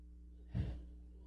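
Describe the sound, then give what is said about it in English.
A person imitates the snore of Simon Peter asleep in prison: one short, rough, nasal snort-like inhale that rumbles briefly, then fades into a faint low hum. No one speaks. “I recognize that snore.”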